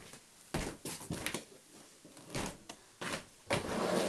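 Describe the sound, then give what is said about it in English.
A door is opened to let a cat in, with a series of clunks, rattles and brief scraping bursts over a few seconds, fairly loud with no one talking. “I'm going to let the cat in a second.”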